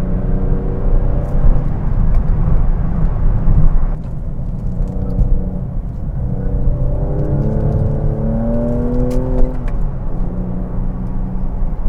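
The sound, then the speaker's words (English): A car engine revs and accelerates steadily while being driven into corners, its harmonic whine rising and shifting through gear changes over a constant low road rumble, with no talking. “All right, we're coming up to some big heavy duty corners here. Better not stay in that lane in the car.”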